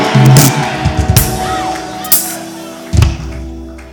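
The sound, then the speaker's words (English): An audience shouts amen together in loud, overlapping bursts, rising and falling over a few seconds with sharp accents. “Those who are shouting the loudest amen.”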